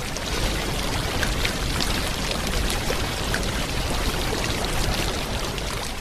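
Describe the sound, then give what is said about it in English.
Floodwater from the Logone River, which burst its banks after heavy rains on the border between northern Cameroon and Chad, rushes in a steady, dense, loud roar, with no pauses or voices throughout the few seconds. “Cameroon authorities say heavy rains that began in September and worsened this week forced the Logone River to burst its banks.”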